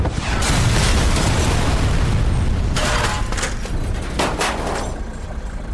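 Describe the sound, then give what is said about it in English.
A heavy, booming blast with a deep low-end rumble, followed by crackling bursts and scattered debris-like pops that keep the noise loud and churning throughout. An RPG rocket explodes beside a Hummer, throwing black smoke and flying pieces and knocking the Hummer onto its side. “I ducked down as the rocket hit somewhere to our left, knocking us onto our side.”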